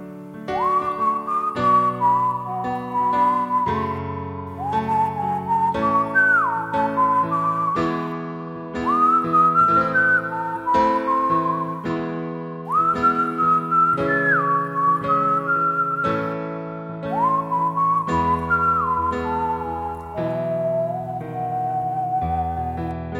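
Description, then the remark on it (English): A clear whistled rendition of a song's melody glides in sustained, sliding phrases over a simplified version of its chord progression, steady plain block chords that change every few seconds, fairly loud throughout with no talking. “So I'll do another whistled rendition of the song over the actual chord progression as I hear it, but first, listen one more time to that simplified one.”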